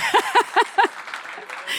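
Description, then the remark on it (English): An audience gives a few scattered, evenly spaced claps for three speakers at an evening talk, followed by a soft, diffuse patter of applause and low murmur. “And yeah, give them a clap.”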